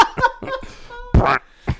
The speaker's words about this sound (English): Dude, yeah, man. Farts, really bad farts.